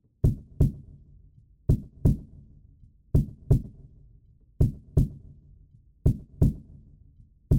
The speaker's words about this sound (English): I see that I played a kick drum in an attempt to make the heartbeat kick